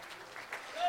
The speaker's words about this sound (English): Thank God. Can we just give the Lord a hand clap of praise tonight?